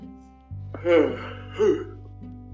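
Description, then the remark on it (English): A person in Florida yawns aloud in two breathy, voiced swells, the first longer and stronger, the second shorter, over a steady low electrical hum. “Excuse me for the yawning, but over here in Florida, where I'm at, Eastern time, it's 1:54.”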